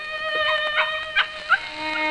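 Several pups yip and whimper in high, excited bursts, with two sharper yelps standing out near the end, in a house in Peckham, south London, without any talking.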